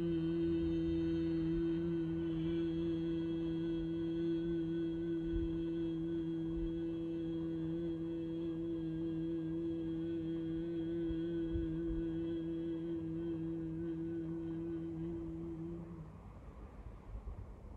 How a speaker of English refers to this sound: And together, we're just going to use the word hum. Try and see if it travels for you in all of your body cavities, okay? So deep breath in, feel the tummy go out, and hum.